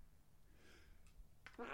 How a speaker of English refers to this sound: I'm going to sneeze.